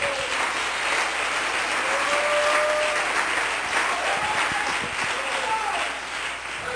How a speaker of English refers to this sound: Oh, come on, clap your hands together.